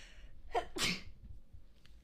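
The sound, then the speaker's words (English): A single sneeze: a short sharp intake followed by a loud, breathy burst, then quiet with no talking. “I sneeze.”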